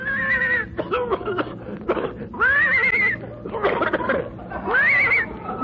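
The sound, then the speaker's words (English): A horse towing a car by rope toward Palm Springs whinnies three times in loud, quavering calls, with rough snorting and breathy huffs filling the gaps between each neigh. “I think the horse is hoarse.”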